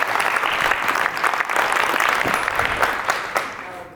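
An audience claps in steady, dense applause, a loud crackling patter of many hands that holds for a few seconds before tapering off at the end. No one speaks.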